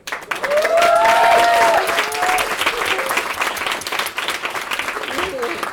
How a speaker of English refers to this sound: Can we please give a huge round of applause for our sound technician this evening?